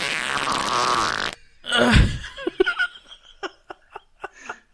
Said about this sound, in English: Fart sounds. Jesus Christ, dude. Fart sounds will always make you laugh.